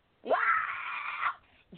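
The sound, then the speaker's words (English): A woman lets out one long, shrill, banshee-like scream, loud, holding for about a second before breaking off, with a brief vocal sound following. “I totally went Irish Banshee, folks.”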